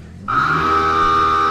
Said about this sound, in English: Where's the nuclear warning when you need one? Our brand new sound effect, the nuke alarm. There it is. It's right there.